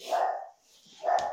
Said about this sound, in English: Yo, dog's going mad, bonkers, bro. See, Ziggy agrees with me, man.